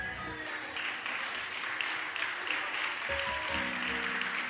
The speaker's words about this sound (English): Oh, that was just a pity clap.